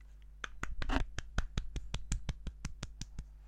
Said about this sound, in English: Why was I the only one to applaud? I don't know. You're the only one who liked it?